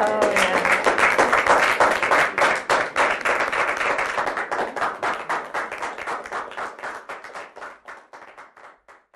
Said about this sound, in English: Well, to the two beautiful, handsome duo, could you give me a clap for them?